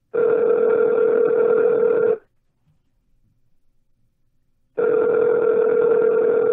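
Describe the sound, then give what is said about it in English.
Two long, steady telephone ringback tones, each about two seconds, separated by a quiet pause, the steady buzzing ring of an outgoing call heard through a phone line, fairly loud and with no talking. “I heard it ringing.”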